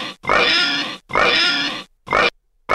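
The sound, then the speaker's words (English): Four loud pig oinks and squeals in quick succession, two long harsh ones followed by two shorter bursts, with nothing else around them. “All right, how many oinks are we gonna give that”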